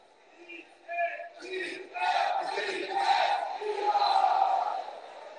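A large crowd at a John Fetterman campaign event chants "defense" in loud, rhythmic bursts, many voices building from a few scattered yells into a sustained, swelling roar.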